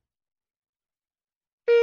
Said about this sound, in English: And life gets even more painful, like the alarm gets louder.